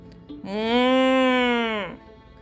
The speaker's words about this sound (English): The buffalo mooed.